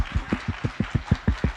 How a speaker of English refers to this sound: Please, men, clap at me. Clap.